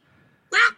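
A single sharp hiccup bursts out after a near-silent moment, sudden and fairly loud, a short voiced yelp-like catch that cuts off quickly.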